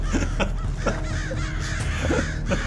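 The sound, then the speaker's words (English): Several crows caw in harsh, repeated bursts at irregular intervals, loud, as they land on a ship's sails, over a steady low background rumble. No one speaks. “And the birds come over and just start landing on the sails and just...”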